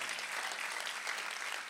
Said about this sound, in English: Somebody clap and thank him.